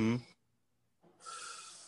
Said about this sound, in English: So right now, if anybody is listening, let's take a deep breath.